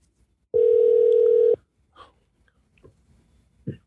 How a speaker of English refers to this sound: Why aren't they answering the phone, front desk? I don't know.